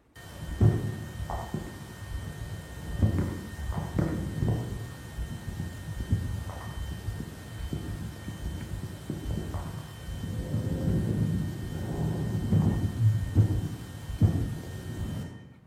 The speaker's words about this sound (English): This you will hear, two emissions at high frequencies coming from a normal human ear. You may also be able to discern background noise like the microphone's hiss, the gurgling of a stomach, the heartbeat, the rustling of clothes.